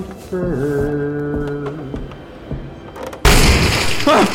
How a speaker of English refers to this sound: He's blown a hole through the door. The debris is keeping it closed, but he's looking through the hole.